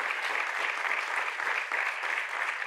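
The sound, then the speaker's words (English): An audience gives a round of applause for two church leaders being thanked, clapping steadily, a dense, continuous wash of many hands with no voices or gaps standing out, holding an even level throughout. “Let's just give a round of applause for them.”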